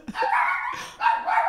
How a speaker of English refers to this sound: Whoa, you got a big reaction from the dog on that one. Go off, puppy.